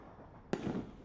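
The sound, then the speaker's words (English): A single sharp firework bang from a firework's heightened finale cracks out of a quiet hiss, followed by a brief rumbling, crackling tail that fades within half a second. No voices are heard. “Yeah, it's got a heightened finale.”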